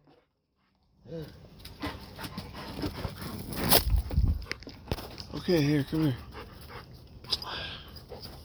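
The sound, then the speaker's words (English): A dog pants and lets out a few high whimpers, with footsteps shuffling while a man speaks briefly, calling it over. “All right, everybody, my dog. Oh, my dog. Our dog.”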